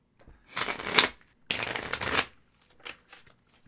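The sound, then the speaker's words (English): Two quick bursts of crisp, fluttering riffles as a deck of playing cards is shuffled, each about a second long with a short pause between, followed by a few soft taps and clicks as the deck is squared up. “Slightly better at this as I do it, as I don't regularly shuffle cards.”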